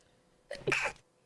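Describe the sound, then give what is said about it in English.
A single sharp sneeze, fairly loud, with a short breathy intake followed by a burst, alone against quiet background. “Bless you. Sorry, I didn't quite get to the mute button.”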